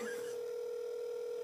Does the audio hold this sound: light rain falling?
no